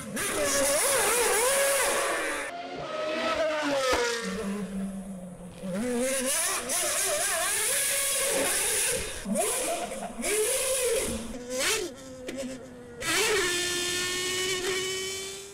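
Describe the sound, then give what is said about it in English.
A high-pitched Formula One race car engine screams and revs repeatedly, pitch climbing and dropping sharply through gear changes, loud throughout with brief dips between bursts. “I'm going to put a quick clip on the screen of what a Formula One car is.”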